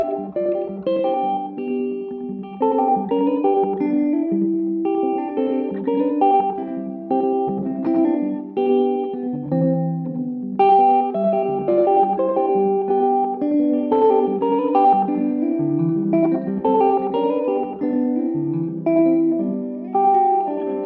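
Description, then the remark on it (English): Electric guitar played through a preset with a swirling Leslie-style filter and two slapback echoes at once, its melodic notes ringing continuously at a steady, fairly loud level with no voices. “It's the Leslie, the filter sound that you hear now. And then another slap is a backup.”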